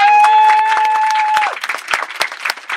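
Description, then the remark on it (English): An audience at a panel event claps enthusiastically for having turned up, dense, with a sustained high-pitched tone ringing over the first half before fading, leaving loose, scattered claps. “And of course, a massive round of applause for yourself for turning up.”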